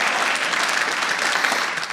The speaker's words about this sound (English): I believe in evolution, okay? I believe in evolution. A lot of places I perform comedy don't, but I believe in evolution. I believe we still... Thank you. Not every audience claps at that part.